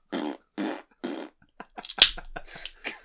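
Three loud, evenly spaced fart noises, then a rapid run of shorter sputtering pops and squeaks, with no talking.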